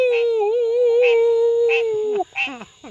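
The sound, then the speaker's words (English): A human voice imitates a wolf's howl: one long, steady, slightly wavering note held for about two seconds, loud, then breaking off into a few short vocal sounds. “People think wolves are howling at the moon.”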